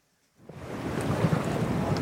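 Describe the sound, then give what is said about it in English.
After a brief moment of silence, a steady wash of open water and waves off Big Pine Key rises up, roughened by gusty wind buffeting the microphone, fairly loud, with no voices. “The threat facing the Key deer is easy to see from the water off of Big Pine Key”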